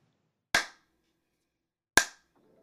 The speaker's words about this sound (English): Just let me do my three claps, okay?